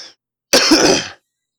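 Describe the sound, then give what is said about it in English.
A single loud throat clearing, a rough, gravelly burst lasting just over half a second, preceded by a brief faint breathy sound, with silence around it. “Excuse me. Sorry for all the coughing.”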